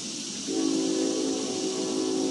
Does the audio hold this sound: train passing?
yes